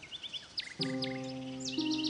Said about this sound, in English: By the way, did you happen to hear the bird as it flew by? Try to turn around and center it in your ears.